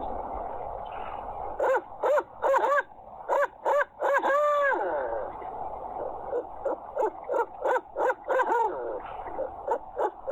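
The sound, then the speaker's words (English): A person imitates an owl as a contest entry with a rapid run of loud hooting calls, pulsing in uneven bursts with a few drawn-out, wavering hoots in between, over a faint background hum. “And here's my best owl hoot.”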